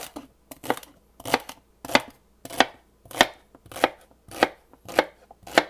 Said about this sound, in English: Next, you're going to chop up some celery and maybe even some carrots.